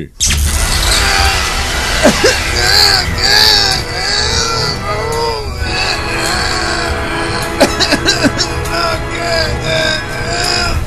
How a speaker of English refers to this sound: Suddenly, lightning bolts spring forth the body of Best Man, specifically from his forehead and, most disturbingly, his crotch. Both bolts strike the form of Pool Man, who immediately collapses and convulses, writhing and screaming in agony.